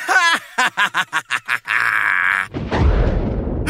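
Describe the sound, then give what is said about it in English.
A voice imitates fireworks: a quick string of rhythmic vocal pops, then a sustained hissing whistle, ending in a broad, crackling boom that fades out. Fairly loud. “Is there anything that can stop you from your loud bangs and whistles?”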